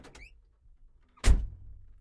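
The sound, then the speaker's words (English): A door is pushed open: a faint latch click, then after a pause a single heavy thump with a low rumbling tail. No voices. “Hey, the door was open.”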